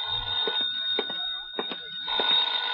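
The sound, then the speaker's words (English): An old-fashioned telephone bell rings steadily with a shrill metallic jangle, its rapid clanging strikes running almost nonstop and easing only briefly midway. No one speaks. “Then I packed a bag, was about to take off, and the phone rang again.”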